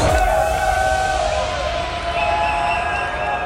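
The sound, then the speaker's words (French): A crowd at a 2014 all-night party on Contact cheers and shouts loudly and continuously, a dense wash of voices with whoops and yells blending into a steady roar for the whole stretch. “Vous êtes à fond, faites du bruit. Tout le monde bruit.”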